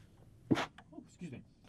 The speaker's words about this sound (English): I got the hit with the sneeze all of a sudden.